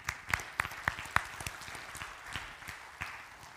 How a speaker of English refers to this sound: Collectively, we've donated almost 1,200 volunteer hours just in mobile markets in our community alone. Good on ya. That seems like it's worth an applause.